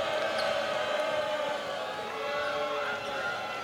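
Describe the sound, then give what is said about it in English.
A basketball arena crowd roars steadily and loudly for several seconds as a foul is called with 2:12 to go in the game, a dense wash of many voices reacting together, with dull thuds of a bouncing ball beneath the noise. “Lost it, but a foul is called. You hear the crowd.”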